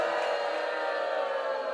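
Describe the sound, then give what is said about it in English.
A talk-show audience cheers as Adolf Hitler is introduced, in a steady, loud roar that holds at the same level for just under two seconds, with no distinct voices standing out. “I haven't heard a crowd like that since Nuremberg.”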